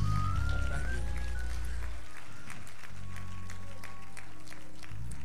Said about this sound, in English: If you're thankful, would you just, if you're able, clap your hands and tell him so.